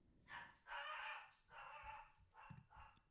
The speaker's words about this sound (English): Kiwi's barking.